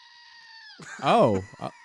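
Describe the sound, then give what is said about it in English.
A squeezable screaming goat toy, pushed at the base by its feet, lets out one loud, wavering, scream-like bleat, followed by a brief second yelp. A faint steady tone hums just before it. “It's the coolest goat ever.”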